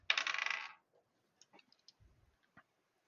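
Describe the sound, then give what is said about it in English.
Regular dice are rolled across a table, clattering sharply in a quick rattling burst, followed by a few faint scattered clicks as they settle. No one speaks. “So I am going to roll my regular dice because I'm using the momentum, not as additional dice, but to reach out to extend my range.”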